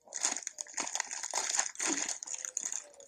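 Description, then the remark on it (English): A plastic bag of Super Mix sweets crinkles and rustles continuously for a few seconds, with bright, crackly bursts of varying loudness and no talking. “I've got golden bees and I've got my last bag of super mix.”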